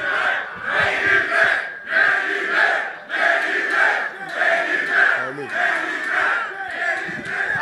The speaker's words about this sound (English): I'd love to add to that because you hear the crowd saying main event